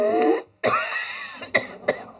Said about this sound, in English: Yes. Well, after you've smoked a pack of our brand, is your cough better or worse? So remember, friends. Hacking, wheezing, coughing fits doesn't mean you call it quits.